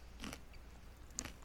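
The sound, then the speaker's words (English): Two crisp, crunchy bites of a wafer snack about a second apart, fairly quiet, with no talking. “I don't think the chewing sounds are particularly helpful. Now that I've figured out that it's a wafer,”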